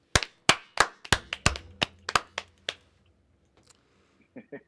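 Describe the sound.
A short round of hand clapping, roughly ten sharp, uneven slaps over about three seconds, then it falls quiet apart from a faint voice murmuring at the end.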